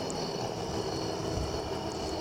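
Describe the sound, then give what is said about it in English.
A police helicopter flying overhead: a steady, unbroken mechanical drone with deep rumble and broad hissing noise, holding an even loudness throughout with no voices. “There's a ghetto bird looking for somebody.”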